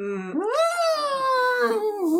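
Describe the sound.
A person imitates an elephant's trumpet with a single loud vocal call that swoops upward in pitch, then holds a long wavering tone for about two seconds.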